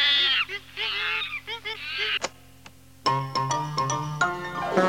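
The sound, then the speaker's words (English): Chimpanzees call loudly, first with drawn-out shrill screeches, then a quicker run of sharp, honking hoots after a short pause. No one speaks. “I think the chimps are trying to talk to Dad.”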